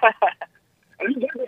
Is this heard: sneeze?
no